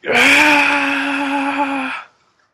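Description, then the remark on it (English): A vampire screams as a stake is hammered into its chest: a single loud, sustained scream lasting about two seconds, high and steady with strong harmonics, then cut off abruptly. No one speaks over it. “As you hammer the stake into its chest, its eyes open. It looks up at you, and it screams.”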